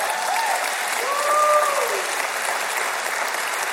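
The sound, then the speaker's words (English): An audience applauds God loudly and steadily, a dense wash of clapping that holds for several seconds, with a few faint cheers or whoops rising briefly above it. “That was much, much better for the great God of the universe.”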